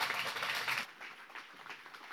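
A burst of audience applause, dense and steady for under a second, then cutting down to a quieter scatter of claps and room noise. No one speaks.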